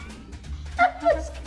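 A cat meows twice in quick succession, short mid-pitched cries over a low background hum, fairly close and moderately loud.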